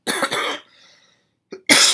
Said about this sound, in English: Okay, so also, I can't stop coughing. Like, I don't know what it is. I had asthma, and for some reason, like, there's some sort of congestion that won't go away. Can't stop coughing.